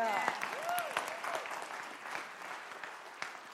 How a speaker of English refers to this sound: Yeah, that's a great place to clap. So let's stop. We're not going to patty cake here. We're going to do it right.